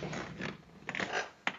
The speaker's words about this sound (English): Okay. Are you shuffling a deck of cards?